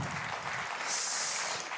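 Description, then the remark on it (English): A church crowd claps for the worship band after a morning time of worship, a dense, steady round of applause, a continuous wash of many hands that swells slightly partway through and holds without pause. “Why don't we just give the band a round of applause there?”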